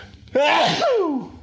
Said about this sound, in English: I gotta sneeze.